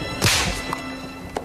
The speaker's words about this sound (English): Slap his ass again. Slap his ass one more time.